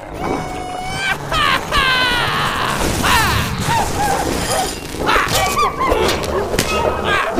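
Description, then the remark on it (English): A chaotic, loud scuffle: several dogs bark, snarl and yelp over repeated thuds and whooshing blows, with a man grunting and shouting amid the struggle throughout. “Take that, you filthy dog!”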